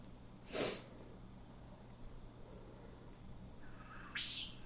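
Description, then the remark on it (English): Two separate bird calls over a low, steady hum: first a short, harsh burst, then after a pause a buzzy note that sweeps sharply upward into a high, bright finish. “Because here's their call. That's what you heard, right?”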